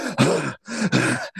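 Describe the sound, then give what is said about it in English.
Heavy, hard breathing with loud rasping inhales and exhales alternating in a quick, labored rhythm, about two full breath cycles in quick succession. “Yeah, they just kept breathing real hard.”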